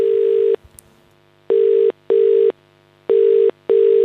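Steady, buzzy answering machine message playback tones on the Jon Richardson show play in a double pattern: one burst, a pause, then two pairs of short beeps, each about half a second long with brief gaps between. They are loud, with no talking.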